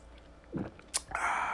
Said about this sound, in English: In fact, I'm going to take a sip, which is very unprofessional, but I'm going to do it anyway.